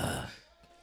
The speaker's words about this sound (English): That's breathing, bro.